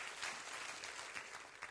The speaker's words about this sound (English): Clap your hands and rejoice to that right now. Praise God.